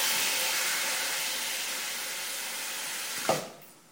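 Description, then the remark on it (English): Tap water pours steadily into the mixing bowl of a salad spinner, onto kale sitting in the colander, to wash the kale, with a broad, even rushing hiss for about three seconds, then a short knock sounds and the flow fades quickly to near quiet. “So I'm going to turn on the water so as to wash the kale.”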